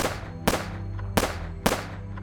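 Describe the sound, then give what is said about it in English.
Four sharp gunshots crack out at uneven intervals near the Royal Perth Golf Club, each a loud, abrupt bang with a short ringing tail, over steady background music from a parked car's radio. “But the music didn't drown out the sound of 4 gunshots.”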